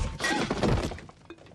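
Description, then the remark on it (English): A vase shatters in a loud, sharp crash, followed by scattered ringing and tinkling fragments that fade over about a second. No voices are heard. “And don't worry about that vase.”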